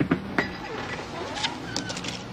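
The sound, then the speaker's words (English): Keys jingle in a few scattered bursts of bright metallic clinks, irregular and moderately loud, with a low rustling hum filling the gaps between them. “You forgot your keys.”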